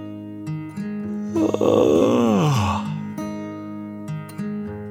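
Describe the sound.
A voice performs one long, exaggerated yawn for a ferret character in a story, rising then sliding down into a low, drawn-out groan, loud over a soft musical backing.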